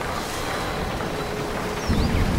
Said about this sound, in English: Here the structure is moving with the slightest breeze. The leaves of the Java plum rustle on the plastic roof.